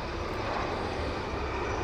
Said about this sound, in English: as another helicopter takes off from on top of the hospital. This one looks a lot more like a standard air ambulance.